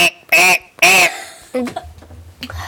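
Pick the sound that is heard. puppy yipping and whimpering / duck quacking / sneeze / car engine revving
duck quacking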